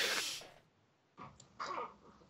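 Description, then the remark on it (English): A voice imitates snoring, as of someone slumped down in a pew, with two breathy, rasping snores separated by a brief pause, fairly loud, with no other talking. “Just sort of slump down in the pew and start snoring.”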